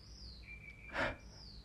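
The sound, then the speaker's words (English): A bird calls faintly with thin, high, sustained chirping tones, and a short breathy burst passes midway through. No one speaks. “And so with the bird signing off too, y'all, I'm out.”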